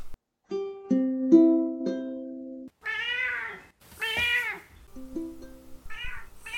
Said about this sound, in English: I hit record, and it played the meow, and it also recorded the meow.